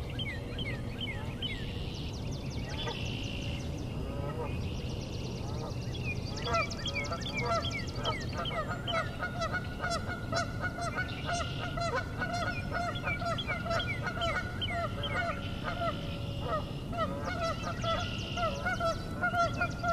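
A flock of geese on a 3-acre property honk repeatedly and overlapping throughout, loud, with dense harsh calls over a steady low background rumble; no talking.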